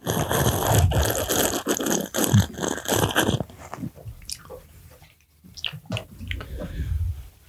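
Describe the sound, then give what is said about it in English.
Someone takes a sip of a hazy beer: several seconds of loud, wet, crackling slurping and fizz, followed by quieter swallowing and soft mouth sounds. “But when I took that first sip, let me take another just to make sure.”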